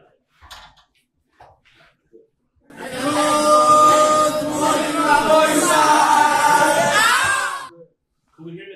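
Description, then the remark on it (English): Several cows moo loudly at once in a video, their long, low, droning calls overlapping into a continuous chorus for about five seconds, after a few faint scattered sounds at the start. “Oh, the cows, yeah, here. You definitely can hear the cows.”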